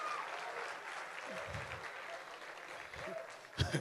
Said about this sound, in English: Clap for me now.